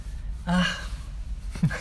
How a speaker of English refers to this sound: Why did you gasp?